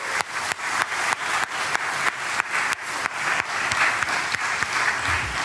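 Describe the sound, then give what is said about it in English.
Steady audience applause, a dense crackle of many hands clapping at once, holding an even loudness throughout with brief dips and no voices on top. “Can we all just give them a hand of applause?”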